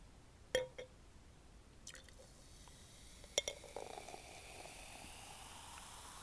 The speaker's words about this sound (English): So with that being said, let me pour my mimosa.